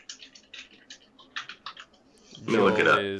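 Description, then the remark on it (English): Quick, irregular keystrokes clatter on a computer keyboard, about a dozen light taps, before a man's voice cuts in and the typing stops. “Typing.”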